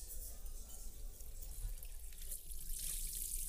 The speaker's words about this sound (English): I actually like washing dishes. Don't get me wrong, I prefer a dishwasher any day of the week. But when I do have to stand there at the sink, carefully washing my mom's fancy wedding china by hand, there's something about the rhythm of it that feels